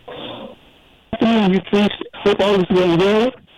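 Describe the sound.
A radio call-in caller from New York speaks through a murky, muffled telephone line, thin and band-limited, in a few short bursts with brief pauses and faint line hiss between them.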